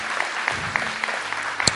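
An audience claps together in a dense, steady wash of overlapping hand claps, with a few sharper individual claps standing out near the end.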